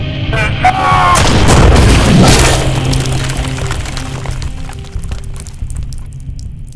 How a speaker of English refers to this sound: I heard the explosion. What happened? What happened to Fuse? The C4 exploded, annihilating Exor.